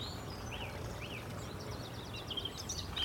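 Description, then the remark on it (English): A song thrush sings: a couple of swooping whistled notes, then a quick repeated phrase of bright, rattling notes, over a steady low outdoor rumble. “This is a song thrush here.”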